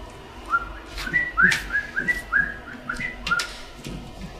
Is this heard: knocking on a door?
no